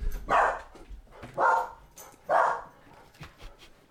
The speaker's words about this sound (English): Drink. Is it like every time the dogs bark, yes. Take a drink? Yeah, every time they bark. Gotta take a double gulp if both of them bark.